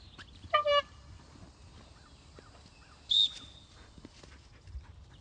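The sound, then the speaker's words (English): A dog training whistle is blown twice during Mondioring dog training outdoors on a humid day, a short harmonic-rich blast followed a few seconds later by a shriller, piercing tone, heard clearly with no talking. “For whistle, yeah, it's not.”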